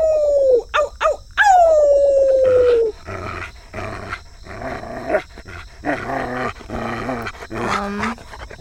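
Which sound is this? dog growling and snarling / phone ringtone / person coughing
dog growling and snarling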